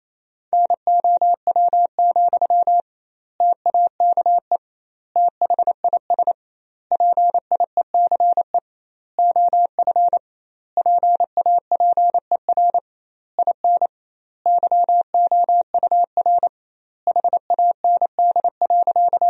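Morse code at 28 words per minute, with doubled word spacing, sending sentences built from the 400 most common words: a steady mid-pitched tone, keyed quickly into short dots and longer dashes, with brief pauses between groups of characters. No voices, just the clean beeping throughout.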